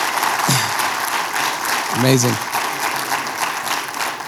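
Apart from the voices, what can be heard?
audience applause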